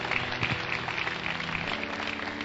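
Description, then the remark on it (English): A crowd at a church service applauds steadily, a dense wash of many hands clapping at once, moderately loud and continuous throughout, with no one speaking over it. “Please clap for them.”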